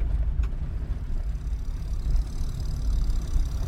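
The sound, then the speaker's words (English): A steady, low tractor engine rumble drones continuously, heavy in the bass with a slightly rough, chugging texture, as a car follows slowly behind the tractor on a rural road past farms on a peninsula. “A tractor forces me to slow down for a while as I fall behind it, happy in a way to see more of the scenery.”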